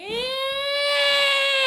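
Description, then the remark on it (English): A person imitates the yowl of feral cats heard at 4 a.m. around the place where they were staying. One sustained, wailing voice rises slightly, then holds steady at a loud, strained pitch for under two seconds. “Feral cats all around the place that we were staying.”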